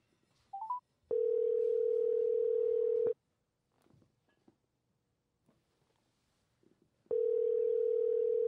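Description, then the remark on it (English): A telephone ringback tone: a steady two-second electronic buzz, a long silent pause, then the next ring begins. A few quick dialing beeps come just before the first ring. “I'm going to make a quick phone call.”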